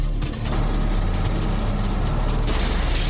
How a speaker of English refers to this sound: Folks, all right? Car broke down.